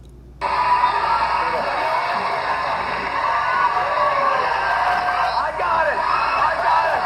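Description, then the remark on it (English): A TV studio audience on a show with Howie Mandel erupts into loud, sustained cheering, whooping and yelling as Rob Schneider comes on, starting abruptly and holding at full intensity with no break, a dense wall of crowd noise. “It's a lot of cheering.”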